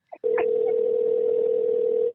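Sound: telephone dial tone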